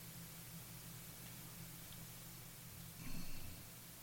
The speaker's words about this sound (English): when you can hear the hiss when we stop talking, right?